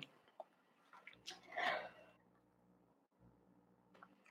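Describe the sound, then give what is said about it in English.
Someone on camera chokes and coughs on swallowed saliva: a single harsh, throaty burst in the middle, with soft wet mouth noises and breaths before and after, then quiet. “Oh gosh, I'm like choking on camera. Yeah, I'm good. I'm like swallowing my own spit or something.”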